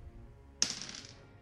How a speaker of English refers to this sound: I haven't rolled my actual dice in a while, so this will be... I'm a bit nervous.